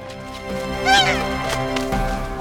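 A single loud, nasal honking call from a large water bird, like an ibis, rising and falling once over a steady, sustained musical background.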